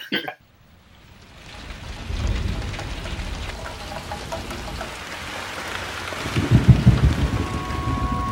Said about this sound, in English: There was a storm. It was an accident. We had an accident. And we got stuck, and we couldn't get out. We couldn't get out because of the storm.